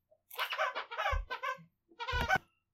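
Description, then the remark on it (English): A squeaky toy belonging to Diesel the dog squeaks in a quick run of high, wheezy squeals, then pauses briefly before one more squeak, with a few soft thuds from handling. No one speaks. “Now that we've taken the squeaky toy away from Diesel, we'll keep moving.”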